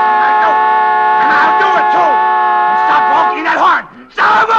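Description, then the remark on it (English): A car horn, stuck on apparently from a short after a crash, blares in one long, unbroken, steady tone for the whole stretch, loud and buzzy, while voices talk over it and briefly drop out near the end. “Honking that horn.”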